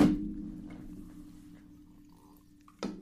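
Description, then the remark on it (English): A drink is thumped down hard on a table, leaving a low resonant ring and faint sloshing, then a second solid knock near the end. Fairly loud, with no talking. “I know you guys don't like slamming of drinks, but it just feels normal to me.”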